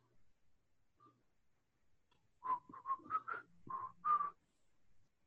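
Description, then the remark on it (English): Several people whistle casually while strolling back to a car. The whistling starts after a quiet stretch: a short run of bright, wavering notes around two seconds long, moderately loud, with a faint low hum underneath. “We're all whistling very casually.”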